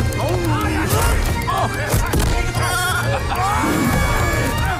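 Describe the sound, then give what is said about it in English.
Several wavering sheep bleats rise out of a loud, dense, chaotic din, repeating over nearly five seconds with a steady low rumble and clatter underneath. “But, at one point, a sheep gets launched through the air.”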